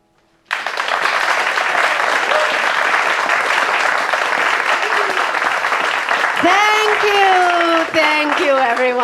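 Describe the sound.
Audience applause bursts in abruptly and holds steady and loud, a dense wash of clapping; near the end, voices cheer and call out over the continuing applause.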